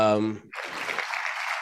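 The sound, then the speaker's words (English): A short voiced sound gives way to a steady burst of applause, dense and crackly clapping that holds at an even level for just over a second. “Round of applause.”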